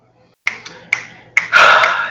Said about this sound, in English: Snaps. Snaps and claps to the genius storm.